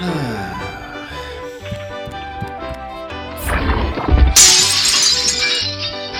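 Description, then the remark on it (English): A mirror is smashed partway through, glass shattering loudly in a sharp crash followed by a bright spray of falling shards, with steady music playing underneath before and after. “I'm not smashing the mirror. Atherton should do it.”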